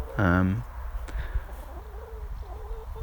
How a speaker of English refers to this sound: I just want to come in and appreciate the chickens. But I feel the need to hencast while I do that.